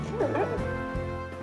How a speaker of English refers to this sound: Hey, my own dog not only moves his paws while dreaming, but he also barks, actually little woofs under his breath. Wakes me up all the same, though.